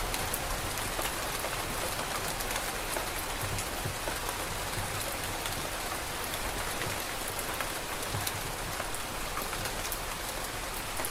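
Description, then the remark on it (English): Steady rain falls evenly and continuously, a dense hiss of drops pattering on a surface with no pauses or voices, moderately loud throughout. “Letting the rain itself dissolve.”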